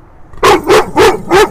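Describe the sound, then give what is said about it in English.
A dog, Tessa, barks protectively at her truck four times in a quick, steady rhythm, each bark loud and sharp with a mid-pitched, slightly strained tone, after a brief quiet moment. “She's protective of her truck.”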